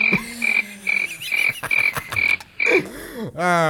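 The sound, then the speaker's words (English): A crickets-chirping sound effect: a steady, rhythmic series of high crickets chirping at even intervals, with lower croaking, frog-like calls mixed in underneath; no one speaks. “Because, you know, normally it's just crickets.”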